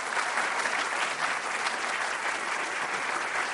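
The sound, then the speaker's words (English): An audience at a Commonwealth Club of California event claps steadily, a dense, even wash of many hands applauding at a constant loudness for several seconds with no voices standing out. “Can we just give ourselves a round of applause?”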